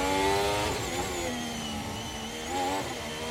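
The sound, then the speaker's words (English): A racing car engine revs hard with rising and falling pitch as it shifts during a pole lap, the car bouncing around, loud, with no talking over it. “That car is just bouncing around the place.”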